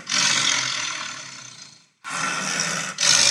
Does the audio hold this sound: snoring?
yes